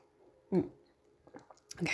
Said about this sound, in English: I'm going to take a gulp of tea.